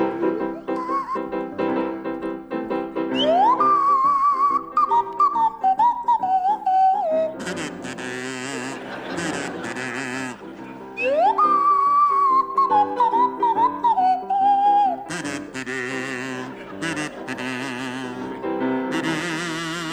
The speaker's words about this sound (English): Right, the first song is Funiculi Funicula, and it'll feature Barry Cryer on the kazoo and Graham Garden on the Swanee whistle.